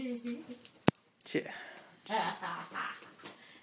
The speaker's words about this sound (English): Oh, God, here comes the dog again.